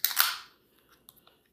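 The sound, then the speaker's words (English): A hibiscus drink container cracks open with a sharp snap and a short burst of fizzy hiss, followed by a few faint, quick clicks. No one speaks. “Anyways, I'm talking a lot about the hibiscus portion, but let's crack this open.”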